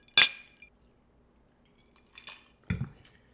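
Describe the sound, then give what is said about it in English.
A sharp glassy clink rings out, followed by a couple of softer knocks and a light chime, like drinking glasses of vodka, club soda, Crystal Light and lemon tapped together in a toast, with no talking. “Cheers! Cheers!”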